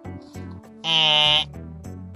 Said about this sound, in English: Buzzer.